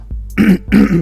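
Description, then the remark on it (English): A man clears his throat twice in quick succession, rough and guttural and fairly loud, each a short harsh rasp with a brief pause between them and no talking. “You gotta excuse me, man, because I gotta clear my throat somewhere.”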